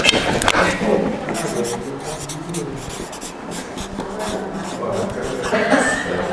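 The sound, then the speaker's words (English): Pen or pencil scratching across paper in quick, uneven strokes as someone writes down suggested analogies for the Trinity, such as water, ice and steam; a steady raspy scribbling that runs the whole time, with faint murmuring voices underneath. “I'm going to write some of these.”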